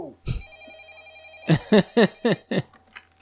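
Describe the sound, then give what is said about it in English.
A hardwired landline telephone in an office in the basement of a museum rings with a sustained electronic trill, then a quick run of five sharp, evenly spaced pulses, fairly loud. “He's going to call you back in your room.”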